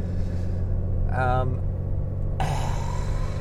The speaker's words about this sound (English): Boy, it sure is different driving this truck empty than it is driving 12,000 pounds connected to it.